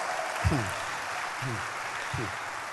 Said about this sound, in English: Are you enjoying church? Clap your hands for church. Church is a nice place.